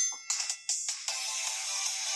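A bright, tinkly electronic jingle from a game's stopwatch timer: a few quick chiming notes, then a sustained shimmering tone that holds steady to the end. No talking.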